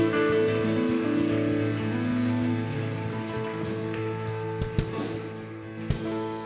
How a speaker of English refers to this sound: Come on, let's find the best clap of praise to the Lord. Hallelujah.